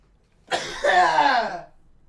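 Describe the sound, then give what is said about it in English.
A single harsh cough with a sharp burst followed by a rough, drawn-out rasp, heard alone against near silence. “Just cough it out.”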